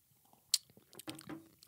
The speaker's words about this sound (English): So let's take a little sip. Ready?